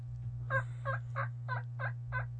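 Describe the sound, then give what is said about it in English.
Turkeys gobble in the morning in a quick series of six evenly spaced, warbling bursts over a steady low hum in the background. “The turkeys.”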